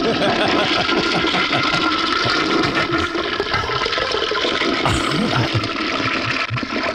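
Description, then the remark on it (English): A toilet flush sound effect plays with a loud, continuous rushing gurgle of water that fills the whole seven seconds, churning steadily without pause and no voices over it. “And you know, it all started out because I had to fix a toilet. So the show's, the show's going in the toilet.”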